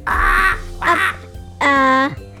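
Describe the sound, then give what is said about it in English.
A parrot squawks three times in quick succession, loud and harsh, with the last call more drawn-out and tonal than the first two. “I know, a parrot.”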